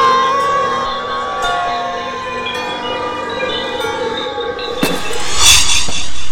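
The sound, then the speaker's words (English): A glowing orb shatters before coming fully online, in a massive release of auric energy: a sustained, layered electronic hum with shifting tones breaks into a sharp crack, followed by a bright, crackling burst of released energy. No voices are heard. “The orb is shattered! He fell! A massive release of auric energy.”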